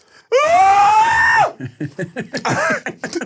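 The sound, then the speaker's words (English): A man lets out one loud, sustained, high-pitched scream for about a second, reenacting how he screamed on seeing a video while driving, followed by a quick string of breathy, choppy vocal bursts. “I started screaming with her.”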